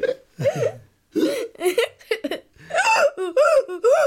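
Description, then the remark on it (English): A person hiccups several times in quick, uneven bursts, fairly loud, with voiced gasps and laugh-like sounds mixed between the hiccups. “Getting the hiccups during a podcast.”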